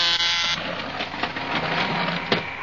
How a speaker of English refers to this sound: Here, I'll press the buzzer so you can go into her laboratory.